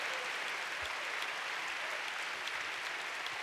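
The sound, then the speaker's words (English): A large audience at City Harvest Church claps steadily, a dense, sustained wash of applause with no clear individual claps standing out, and no speech over it. “Oh, come on, give the Lord a big clap.”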